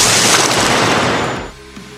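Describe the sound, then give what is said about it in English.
A loud, crackling magical explosion bursts out all at once as the Cinder Wolf's blue flames and Pyre Paladin's red elemental flames swirl into a purple mixture that explodes in a brilliant flash; a dense roar holds for over a second before dropping away into a faint, ringing hum. No voices. “The purple mixture explodes in a brilliant flash, leaving the combatants staring at each other.”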